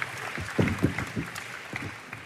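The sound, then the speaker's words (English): Audience applause, a steady wash of many hands clapping at moderate volume for a couple of seconds, with a few brief voiced whoops or shouts rising through the clatter. “All right, round of applause for”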